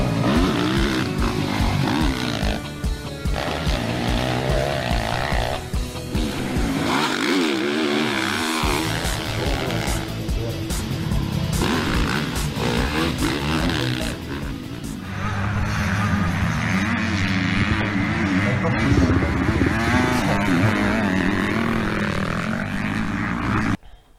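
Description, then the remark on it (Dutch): Motocross bikes in a race, with De Reuver leading, roar loudly, their engines revving and dropping in quick, uneven surges as they race over the whoops, with a constant high-pitched snarl throughout. “De Reuver still leading over the whoops. De Reuver rides right on the edge.”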